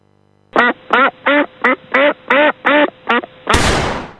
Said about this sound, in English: That's what you're listening out for, the Duck Hunt theme. There's that whack, whack, whack, whack, whack, kaboom, basically.